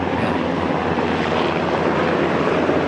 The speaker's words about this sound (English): Yeah, we just have a helicopter passing right overhead, but yes, exactly.